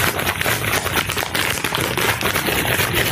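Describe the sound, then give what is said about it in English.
A bag of nuts shaken steadily for about three seconds, making a loud, continuous crackling rattle of many small hard pieces knocking together, with no voices. “Grab yourself a bag of nuts. Shake those nuts.”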